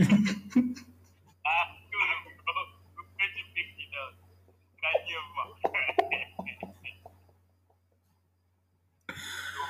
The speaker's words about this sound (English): getting phone calls at 3 a.m.